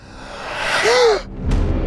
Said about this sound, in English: Hades and Hermes heard the startled gasp and turned to see Asclepius's ghostly shade staring down at his own corpse in horror.